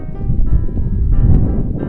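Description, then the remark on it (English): Strong wind blows across a local hilltop on Claremont Canyon Trail overlooking the Bay Area, in a steady, heavy low roar, buffeting and rumbling without a break for the whole stretch, with no voices. “We went to a local hilltop so we could look over and see the entire Bay Area. It was really windy.”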